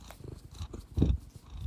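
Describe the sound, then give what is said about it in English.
A cat purrs, a soft, rumbling low-pitched vibration that pulses steadily and swells louder for a moment near the end. “That's Frank purring.”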